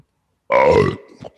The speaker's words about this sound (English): You burp mid-freeze.